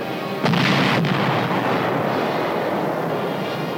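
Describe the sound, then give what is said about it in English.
Howitzer and mortar artillery fire: a heavy boom bursts in, a second blast follows about half a second later, then a loud, rumbling roar of continuous gunfire carries on with no voices. “Nice to hear the steady crump of your own mortars. Even nicer to hear the howitzers slamming them out.”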